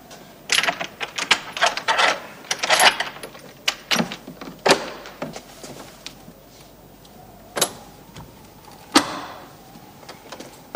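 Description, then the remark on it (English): A flurry of sharp metallic clicks and clunks, like a lock being worked and bolts drawn, followed by a few heavier thuds as a door is unlocked and pulled open, with no voices. “And then unlock the door.”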